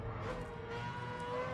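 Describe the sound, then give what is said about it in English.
A racing video game car drives along with a steady, droning engine hum and low road rumble, continuous and fairly loud, with no one talking. “Here we are driving.”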